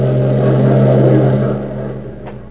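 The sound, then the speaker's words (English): A car engine hums steadily with a low, droning tone as the car is driven along the road from Long Island to a theater in New York, loud at first, then easing off slightly toward the end. “But his thoughts are not on the play as he skims along the road”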